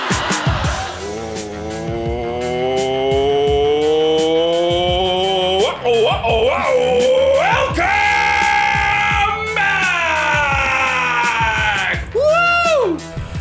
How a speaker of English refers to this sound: Nobody wants to get yelled at this early in the morning.